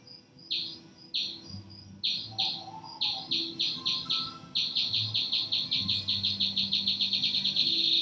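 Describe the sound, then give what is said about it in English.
Water bat squeaks at 110 decibels, sharp high chirps repeating at first about twice a second, then quickening steadily into a rapid, even stream of pulses as the bat homes in, with no voices. “As the bat homes in, its squeaks speed up.”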